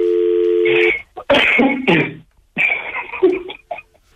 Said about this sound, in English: Okay, let's ring him again.